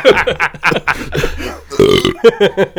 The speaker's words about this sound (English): Now burp.